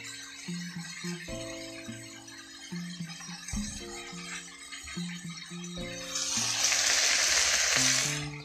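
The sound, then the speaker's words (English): Pork sizzles and crackles steadily as it fries in a hot pan, the frying hiss swelling louder near the end, with soft tonal music playing underneath. “So it's sizzling.”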